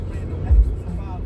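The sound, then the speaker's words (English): A car driving in traffic, heard as a steady low road-and-engine rumble from inside the vehicle, with a brief heavier surge of bass partway through. “We're back in traffic.”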